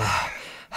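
A loud breath rushes straight into the microphone, a heavy exhale that fades briefly before another breath surges back in, with no talking.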